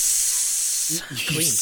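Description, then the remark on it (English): A voice imitates sizzling on a fire with a steady, loud, breathy hiss lasting about a second, then breaks into a short voiced, wavering sound as the hiss trails on. “I just put on the fire and then...”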